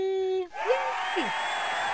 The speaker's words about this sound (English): The cheer, it was just so loud. Nobody could hear you.